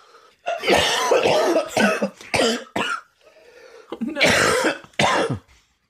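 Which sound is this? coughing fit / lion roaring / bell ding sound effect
coughing fit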